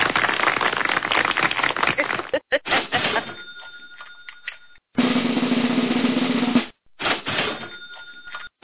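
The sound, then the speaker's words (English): A frying pan sound effect: a frying pan gets struck twice, each hit a bright metallic clang that rings on with a high sustained tone. Bursts of loud, noisy sound fill the gaps between the hits. “Oh, the infamous frying pan.”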